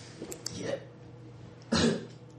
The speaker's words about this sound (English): How can you cough? Your skeleton. I have. He's charred bone and ash.